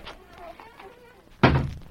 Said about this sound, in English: you can close the door.